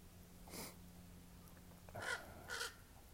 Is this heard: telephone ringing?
no